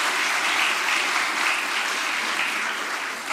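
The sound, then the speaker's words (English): An audience applauds steadily, a dense wash of many hands clapping at an even, loud level for a few seconds with no voices standing out, thanking the volunteers of the church's annual Easter egg hunt ministry. “Just show a round of applause and thank you for their ministry.”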